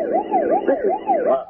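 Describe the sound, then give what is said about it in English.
An emergency vehicle siren wails in a town in quick, repeating up-and-down sweeps, fairly loud and steady throughout, with no voices over it. “Siren. Not a familiar sound in this town.”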